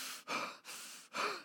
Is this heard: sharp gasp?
yes